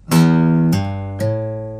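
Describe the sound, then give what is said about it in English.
A low sixth guitar string is plucked open, then two hammer-on notes at the 3rd and 5th frets, played with the first and third fingers, follow, each stepping the pitch higher. The three notes ring in a steady sequence at moderate loudness, with no voices. “So if I do open 3 and 5 on the 6th string.”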